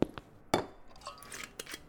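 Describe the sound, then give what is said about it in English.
A heat-sensitive ceramic coffee mug clinks several times in an uneven rhythm: a couple of sharp, bright knocks, then softer clattering and a final light tap, with no one speaking. “The ceramic is heat sensitive when you pour the coffee.”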